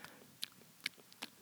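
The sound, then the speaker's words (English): Three sharp, wet crunches spaced evenly apart, like teeth biting into a crisp pickle, with quiet chewing noise between them and no voices. “It's like the ASMR video where the woman is biting into pickles and then she crunches the pickle sound.”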